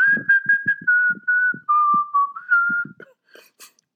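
A person whistles a short, steady melody, the pitch stepping down and back up across a few sustained notes, with soft percussive taps underneath and a brief rustle at the end.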